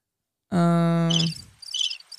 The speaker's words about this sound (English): The crickets.